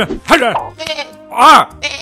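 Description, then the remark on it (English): Two loud, wavering goat bleats, one early and one near the end, separated by shorter tonal bursts and clattering noises. “See goat. Break goat.”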